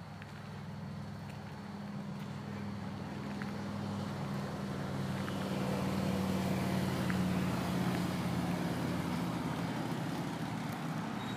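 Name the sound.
motorcycle engine passing by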